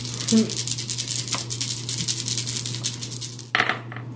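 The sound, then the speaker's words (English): Dice clatter and rattle across a hard tabletop in a short burst of sharp clicks, with a steady low hum and faint voices murmuring in the background. “Such dice, very one.”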